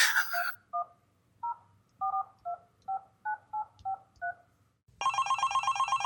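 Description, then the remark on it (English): A phone number is punched in to call the police, the LAPD: roughly eleven short touch-tone beeps in a quick, uneven rhythm after a brief opening tone, followed by a louder, buzzy ringing tone that starts abruptly. “I'm going to call the cops right now, okay?”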